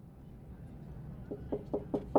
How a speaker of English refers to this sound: A soft knock at the lavatory door made her heart jump.